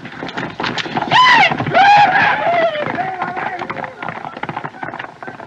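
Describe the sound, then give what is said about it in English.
Horses whinny loudly over a busy clatter of hooves, the shrill neighs peaking early before the galloping commotion continues and gradually thins out as the spare horses run away. “They've run away. Yeah, with the spare horses.”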